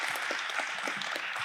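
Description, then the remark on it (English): A round of applause from an audience for a father: dense, steady clapping with many overlapping hand claps forming a continuous crackling wash, fairly soft and with no voices. “Let's give Dad a round of applause.”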